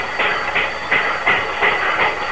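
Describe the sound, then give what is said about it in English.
A steam locomotive chuffs in a steady, quick rhythm, about three beats a second, while its safety valve blows a continuous high-pitched hiss over the exhaust. No voices. “There goes the safety valve.”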